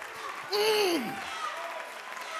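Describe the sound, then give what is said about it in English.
A crowd claps their hands to the Lord in a dense, even wash of applause, while a loud voice calls out over it with a long falling shout. “Oh, let's clap our hands to him right now.”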